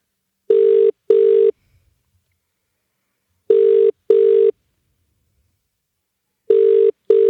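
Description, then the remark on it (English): An outgoing call to a mother, with its ringback tone purring in three paired bursts, two short rings then a pause, repeating steadily with nothing else in between. “Let's call her.”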